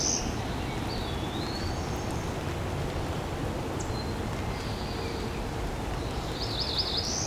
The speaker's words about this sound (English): Very difficult for me to see this bird. I'm trying to keep an eye in the direction where I hear it. See if I can see something flying around or jumping around.